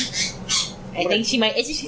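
A happy pet bird squawks in a string of loud, harsh bursts, with shrill high calls over brief chattering notes, continuing over about two seconds.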